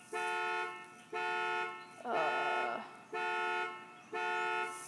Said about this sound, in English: Sorry, my neighbor's car just went off.